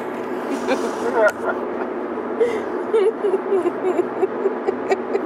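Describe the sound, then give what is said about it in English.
A steady low rumble of road noise inside a car driving to a festival, droning continuously throughout, with voices talking over it. “We're recording these sessions actually live in cars, actually going to festivals and events, so you will hear road noise”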